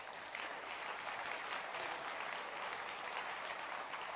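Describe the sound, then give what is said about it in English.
A large audience at a church in a forest claps steadily for several seconds, a dense, continuous wash of applause with no pauses or individual voices standing out. “Look, if you have been able to come to church, especially a church in this forest, then you must clap your hands for yourselves.”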